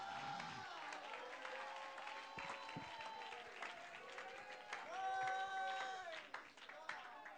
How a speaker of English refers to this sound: Come on, clap your hands to the Lord, everybody. Woo! Come on, let's praise Him.